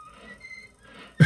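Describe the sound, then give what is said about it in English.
Cartoon characters in the old Steamboat Willie film whistle along in a thin, fairly soft melody of a few sustained notes, then a sudden loud, rough burst of noise cuts in at the end. “They're all whistling along.”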